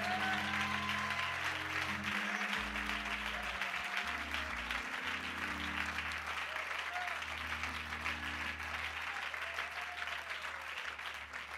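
A large church audience claps steadily and continuously, the dense applause at a loud, even level with a low organ-like tone sustained beneath it.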